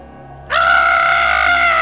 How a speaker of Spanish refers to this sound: tuvo que gritar porque mientras buscaba un grito en el internet.